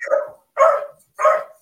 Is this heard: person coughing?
no